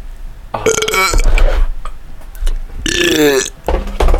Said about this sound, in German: Ey, wir rülpsen jetzt bis zu einer Stunde. Noch strecken. Ich kann nicht rülpsen, Alter.